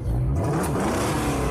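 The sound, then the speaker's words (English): A video game car engine revs loudly and continuously, its droning pitch sliding upward as it accelerates, with a gritty, mechanical whir throughout and no voices. “He was playing some game that had a car in it, and I kept hearing car sounds.”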